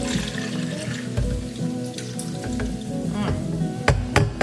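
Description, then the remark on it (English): Warm oil with whole garlic cubes is carefully poured into a hot pan with a steady, hissing sizzle, broken by sharp crackles and a few louder pops toward the end. No one speaks. “And then I'm going to very, very, very carefully pour in my warm, because it's cooled off, my warm oil and garlic, whole garlic cubes, okay?”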